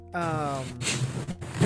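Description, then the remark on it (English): A sleepy male puppy snores loudly, a nasal, slightly whiny tone sliding into rough, raspy snorting breaths that rise and fall unevenly over a couple of seconds. “because your puppy is really snoring loud.”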